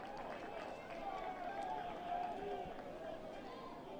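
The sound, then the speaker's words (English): A big baseball stadium crowd roars to encourage the pitcher as he tries to get out of a jam with runners at second and third and one out, a dense, steady wash of cheering voices and clapping that holds at an even level for the whole stretch. “You hear the crowd trying to lift Fincher as he tries to get out of this jam.”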